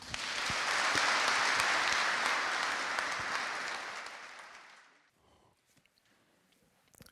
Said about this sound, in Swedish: Ge Carl Bildt och Rikard Bengtson en varm applåd.